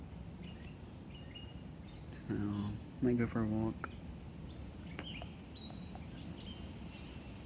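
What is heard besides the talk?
birds chirping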